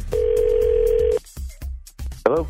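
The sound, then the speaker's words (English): A telephone dial tone on an outgoing call placed by the 102.9 The Wolf radio morning show: one loud, steady, low-pitched hum holding for about a second, then cutting off into scattered line clicks and a brief warbling burst. “Well, we're calling Trevor to find out why he's not calling Danielle back.”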